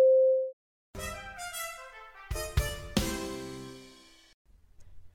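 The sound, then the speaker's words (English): A single clean, mid-pitched time-signal beep on the Mutual Audio Network, announcing 12 o'clock, sounds for about half a second, then after a short pause, loud ringing musical chords swell and slowly fade out. “At the tone, the time will be 12 o'clock.”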